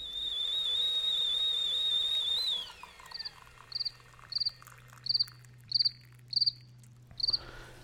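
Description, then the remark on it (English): A steady high whistling tone glides downward and fades, followed by crickets chirping in short, evenly spaced bursts about every half second, with no one talking. “edit in cricket hour and a half.”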